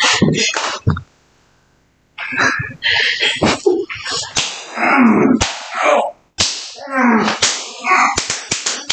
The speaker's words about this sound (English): See, what y'all don't know is when they were doing the introduction, we were already taking the crop and the whip to him, and he was very quietly tolerating it quite well.